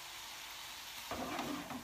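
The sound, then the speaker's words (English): Three chicken breasts sizzle steadily as they brown in a hot pan, a continuous hiss that swells louder about halfway through with sharper crackles and pops. No one speaks. “You want to make sure that all your chicken is getting brown.”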